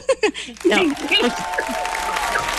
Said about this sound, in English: Yeah, round of applause.